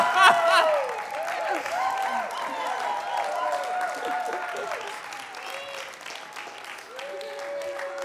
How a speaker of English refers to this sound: Can I just point something out? I don't think I've ever gotten applause for a sermon before. That was a sermon.